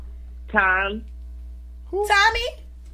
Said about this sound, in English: Somebody's calling me. I didn't even know they still had ringtones.